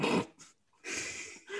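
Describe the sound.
A person imitates an Alsatian dog's vicious snarl as it attacks and bites a man's throat out, with a short harsh burst, a brief pause, then a longer rough growling bark, loud.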